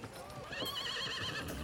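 A wind-up toy horse gives a bright, wavering whinny lasting about a second, fairly loud, with faint clip-clop gallop sounds around it; each time it is wound up it does three gallops.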